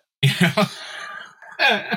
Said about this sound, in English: Sorry, I'm overcoming a flu. So I've got this cough that rears its head.